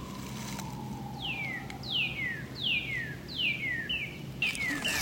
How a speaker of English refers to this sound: It's all cardinal. And it actually goes away. Later, as the season progresses, the cardinal stops saying, miracle, miracle. But initially, that's sort of its spring call.